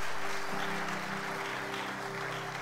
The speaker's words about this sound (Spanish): Amén. Gloria a Dios. Dale un aplauso a ese que te llamó. Jesucristo.